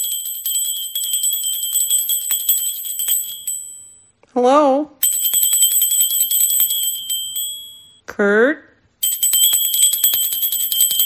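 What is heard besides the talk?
small hand bell ringing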